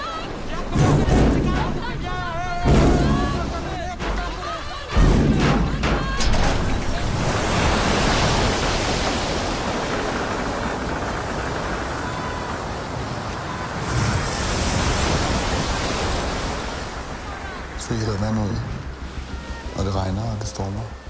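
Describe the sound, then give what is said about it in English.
A huge storm at sea: loud, continuous roar of wind and crashing waves around a crude cargo-like ship carrying refugees that is taking on water, with water surging and people shouting over the noise at the start and end as they begin bailing. “They're crammed in when a huge storm means the boat is now taking on water. They must bust out and begin bailing.”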